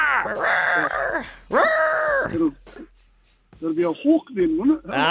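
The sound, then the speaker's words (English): A person mimics a hawk's cry as a quiz clue for the Illawarra Hawks, with two long, shrill, wavering screeches. After a short pause, someone speaks. “It'll be a hawk then, won't it?”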